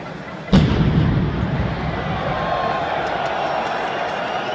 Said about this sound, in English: And I found this video where someone recorded the game live. And you can hear the bomb in the background. And it is pretty scary, man. It is pretty scary.